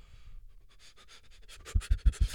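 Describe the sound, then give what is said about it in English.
Heavy breathing by people right against a microphone, with rapid rhythmic breaths that build into several loud, blowy puffs hitting the mic near the end. No talking. “Anyway, I'm just gonna hear us breathing.”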